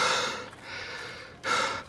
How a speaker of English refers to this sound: He's breathing heavily and lagging behind, barely able to carry on a conversation.